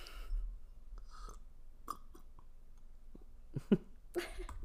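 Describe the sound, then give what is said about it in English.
Someone drinks in a few audible gulps and swallows, with soft breathy mouth noises and small wet clicks, ending in a louder swallow and an exhale. “You just gulped.”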